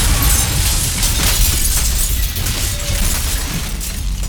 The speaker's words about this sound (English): And the windows all burst.